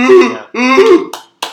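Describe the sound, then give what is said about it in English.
Someone imitates a clapping seal with two loud, throaty honking barks, each about half a second long, followed by two quick, sharp clap-like smacks. “That was a seal clapping.”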